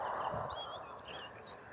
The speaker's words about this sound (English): Birds sat on the electricity wires. Everyone's making a lot of racket.